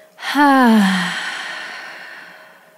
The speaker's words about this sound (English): Together, let's take a deep breath through the nose. Inhale. Open your mouth. Let it go. Just like that.